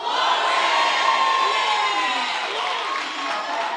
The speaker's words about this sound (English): Oh, come on, keep going for a minute. Let's just keep shouting glory to him. It's biblical. It's biblical. Just raise your voice. Don't just clap, but just begin to say glory.